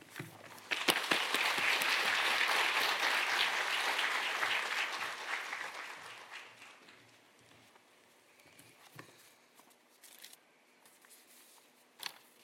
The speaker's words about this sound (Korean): 나와서 귀한 말씀 전해주실 때 큰 박수로 환영하겠습니다.